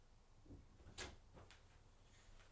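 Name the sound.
door opening and slamming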